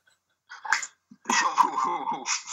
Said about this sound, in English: My dogs.